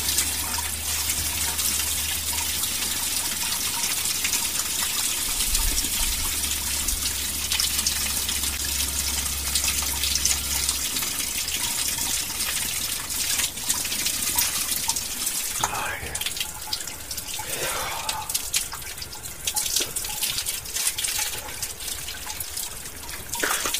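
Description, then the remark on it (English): Hot water from an outdoor shower at Pindari rushes and splashes continuously on a cold July night, a dense hiss with a low hum underneath during the first half and a few brief gurgling swirls later. “Well, the water's hot.”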